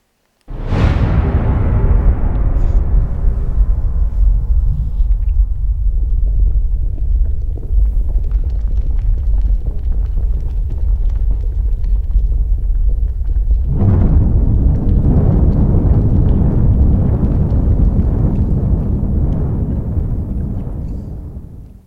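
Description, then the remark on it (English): A sonified supernova: a sudden deep boom of the initial implosion opens, fading into a sustained low rumble as the shockwave comes out, then a second surge around midway swells into a dense, bubbling roar of the build-up and ignition of hot gases that holds loud until the end. No voices. “So if you listen in, you should hear the initial implosion at the start, the shockwave coming out, and then you should hear the build-up and bubbling and ignition of all of the hot gases underneath.”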